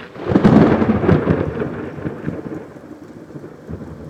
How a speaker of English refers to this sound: There's this big crack of thunder.